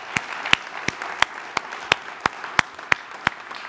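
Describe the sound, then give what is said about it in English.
A church audience applauds the worship music in a steady wash of clapping. One louder, sharp clap stands out at a regular, quick rhythm, about a dozen times. No one speaks. “Can we give the worship a round of applause, man?”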